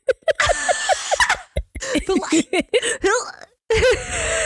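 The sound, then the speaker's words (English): A person hiccups several times in quick succession, short sharp catches of breath mixed with light giggling and brief vocal sounds, with a steady hiss toward the end. “I've got the hiccups right and now.”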